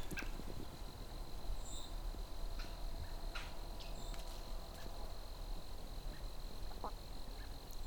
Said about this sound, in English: American robin here.